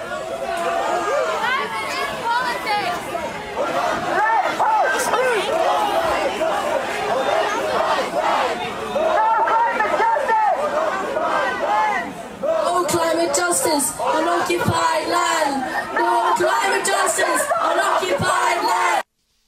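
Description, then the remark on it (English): A loud protest crowd chants together the phrase "No climate justice on occupied land", many voices merging into shouted, repeated phrases with brief pauses between them, continuous and dense throughout. “No climate justice on occupied land.”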